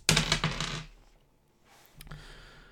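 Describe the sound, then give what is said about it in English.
Dice rolled on a table for a constitution roll in a tabletop role-playing game: a burst of hard, clattering taps as the dice tumble across the surface, followed by a quieter second rattle and scatter about a second later, with no talking. “So let me find my own dice.”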